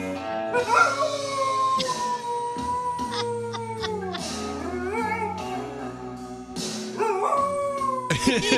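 A dog howls along to a song, its long, wavering, pitched howls rising and sliding over steady instrumental music, loud, with brief pauses between drawn-out notes.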